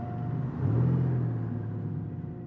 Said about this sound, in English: I looked over at the house one last time as I started the car.